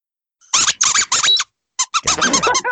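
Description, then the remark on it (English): A human voice lets out a series of high, squeaky dolphin-like squeals, three loud bursts, a short pause, then a quicker cluster of chattering squeaks, with no words spoken. “It sounds like a dolphin.”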